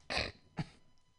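A short, close cough in two bursts, a strong harsh hack followed by a softer, throatier one, with no talking around it.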